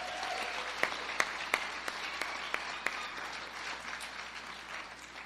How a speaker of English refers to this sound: And come on, give them another big hand clap.